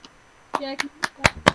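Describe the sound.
About six sharp hand claps in a steady, fairly quick rhythm, loud and crisp, with a brief voiced sound overlapping the early claps.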